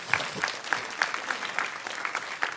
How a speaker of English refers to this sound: Y'all need to clap your hands and say amen right there.